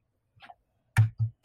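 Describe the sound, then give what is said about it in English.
Someone sips a Diet Coke: a faint, soft slurp, then three loud, thumping gulps in quick succession, each with a low, throaty thud. No one talks. “Let me take a sip of my Diet Coke here.”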